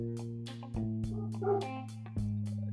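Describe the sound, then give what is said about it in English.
Dogs bark and yip in the background where the speaker is sitting, in a quick, irregular series of short bursts, fairly quiet, over a steady low electrical hum. “you can hear the dogs in the back are big fans of Orange Cassidy”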